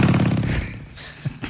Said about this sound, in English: That motorcycle's messing me up.